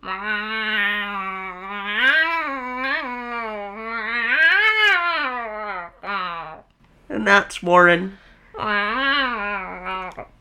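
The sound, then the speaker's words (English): A man's voice imitates a cat with several long, wavering, loud meows, followed by a brief spoken phrase and one more drawn-out meow. “He's been turned into a cat.”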